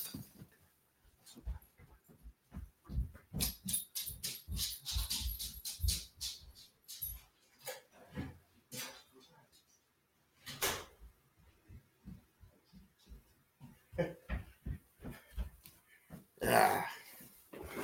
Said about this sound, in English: I do apologize. I've never had to do that before, but my dog was going absolutely crazy.